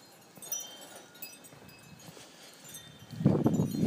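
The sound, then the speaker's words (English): Faint wind chimes tinkle with a few sustained, high ringing tones over a soft rustling background, before a louder, rougher shuffling noise rises near the end. “Some nice wind chimes.”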